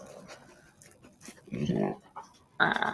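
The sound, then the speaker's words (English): A female dog growls and rumbles in two short bursts, the second sharper and brighter, after a second or so of quiet, murky background noise. “a growly dog that barked every once in a while”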